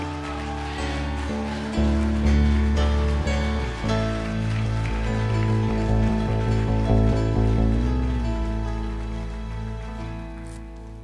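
A church audience applauds at an evening service to welcome a guest preacher, with dense, continuous hand clapping that holds steady for several seconds, mixed with sustained low musical chords playing underneath.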